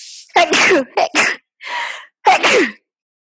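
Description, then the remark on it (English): A person sneezes loudly, several sharp bursts in quick succession with a breathy gasp in between, then silence. “That is, hang on one second, I have to sneeze.”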